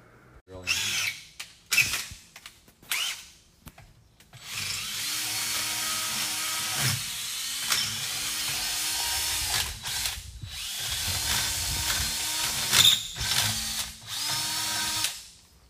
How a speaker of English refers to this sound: That's Pop's drilling for you kids.